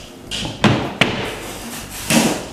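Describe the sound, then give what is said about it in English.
Thuds and knocks as a cabinet corner door is fitted into place: two sharp bumps, then a longer rattling clunk, over a faint background hiss with no talking. “And also install the carousel before you put the top on or the doors on. It's much easier. Corner door.”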